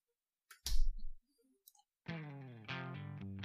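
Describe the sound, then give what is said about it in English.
A few soft handling clicks and thumps, then an electric guitar rings out two sustained, reverb-washed chords in close succession, loud and full, with no talking. “I love the reverb on that.”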